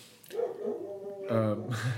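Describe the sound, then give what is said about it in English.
Excited dogs bark and yelp in a few quick, high-pitched bursts, with whiny, drawn-out cries between them, moderately loud. “and the dogs are getting excited again.”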